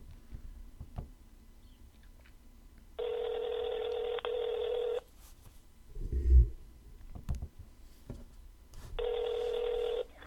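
A phone call being placed to the owner of Kevin, a German Shepherd dog, rings out twice, each long buzzing ring lasting about two seconds, with a quiet pause and a soft thump between them; no one speaks.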